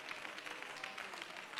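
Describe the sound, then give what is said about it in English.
During a worship service, an audience claps their hands in thanks to God in a steady, dense patter of many overlapping claps, fairly soft and continuous throughout, with no voices standing out. “Come on, it's worth more than a hand clap.”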